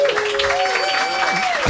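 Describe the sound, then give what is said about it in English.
Audience applause for Jeff Davis, a dense steady wash of clapping that holds at an even loudness throughout, with cheering voices and a thin, high whistle-like tone riding over it. “Round of applause for Jeff Davis.”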